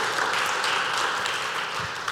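A round of applause from a group, steady dense clapping that holds at an even loudness for about two seconds without voices over it.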